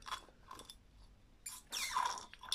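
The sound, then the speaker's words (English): Melting ice from a drink is chewed during a water break: a few crisp crunches at first, a short pause, then louder, longer bouts of grinding crunching, with no talking. “My ice is melting and I really wanted to eat it.”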